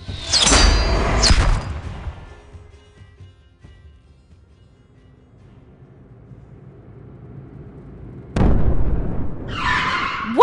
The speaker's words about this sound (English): Was that an explosion?